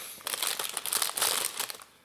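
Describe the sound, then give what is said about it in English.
Crinkling packaging of butter Ritz crackers, a burst of dense, bright rustling and crackling that rises quickly, holds for about a second and a half, then fades out. No voices are heard. “I'm gonna get a cracker while you yeah are squirt around.”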